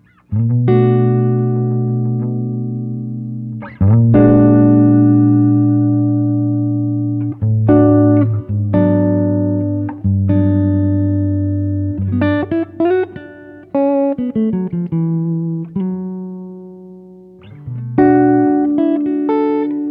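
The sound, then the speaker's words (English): A clean electric guitar, recorded dry and direct in on an amp's bright channel (volume at 9 o'clock, treble at noon, bass at 3 o'clock) with added reverb, plays ringing, sustained chords and short melodic runs with a light reverb tail, strummed in a few phrases with brief pauses, loud, with no voices. “And these are completely dry, other than the fact that I added some reverb to make them sound a little less awkward and dead in the space.”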